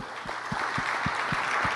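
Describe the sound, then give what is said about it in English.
An audience claps steadily for a man after a prayer, a dense wash of overlapping hand claps with a few sharper, regular low thumps every quarter second or so running through it. No one speaks. “Of applause for Scott.”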